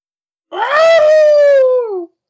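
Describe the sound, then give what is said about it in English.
A person imitates a wolf howl as a sound effect for the North Carolina State Wolfpack: one sustained, wavering cry that rises briefly, then slowly slides downward for about a second and a half, loud, with silence before and after. “It doesn't seem like a pack, more like a lone wolf, but okay.”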